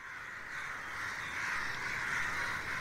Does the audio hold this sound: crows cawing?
yes